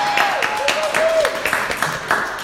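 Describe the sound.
A round of applause from a crowd for the worship team: dense, steady clapping that keeps up throughout, with scattered voices and a thin sustained tone running underneath.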